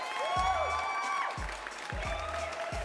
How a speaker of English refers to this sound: Now you hear them cheers? You know who they cheering for? They cheering for you.